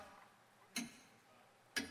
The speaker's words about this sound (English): And the clock is ticking. Can you hear it? Blue Springs, do you hear the clock? Sitting at home, do you hear the clock?